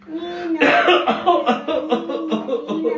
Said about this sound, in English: We have a guy who's smoking, and I'm coughing, and everybody's coughing.